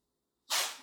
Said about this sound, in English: Those are some loud sneezes. I apologize.